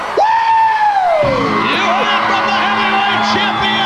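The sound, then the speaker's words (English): The wrestler Sting lets out a loud, sustained scream in a wrestling promo that rises and then slides down in pitch, followed by more shouting over a noisy, crowd-like background for a few seconds. “I just wanted to hear him scream because Doc can't stand Sting's promos.”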